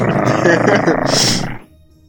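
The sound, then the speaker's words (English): A voice imitates a little pit bull named Fido snarling and snapping its teeth: one loud, rough, growling burst lasting about a second and a half, turning hissy near the end before cutting off to quiet. “The dog snarling, snapping teeth an inch from my nose.”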